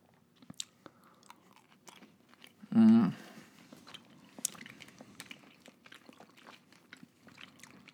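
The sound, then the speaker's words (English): Wet chewing of sour gummy candy (Sour Patch Kids, a green one and then an orange one) with scattered smacking clicks throughout, interrupted midway by a brief loud voiced hum or murmur before the chewing continues. “I'm going to eat a green one now. I'm going to eat an orange one now.”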